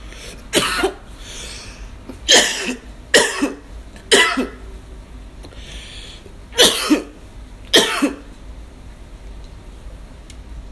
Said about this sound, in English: I always cough a lot when I smoke out of raw papers.